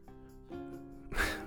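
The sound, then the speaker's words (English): A soft, shaky vocal breath gives way to one sharp sniff near the end from a woman who has been crying, the kind of tearful sniffle that follows crying. No one speaks. “Talia sniffs. She's clearly been crying.”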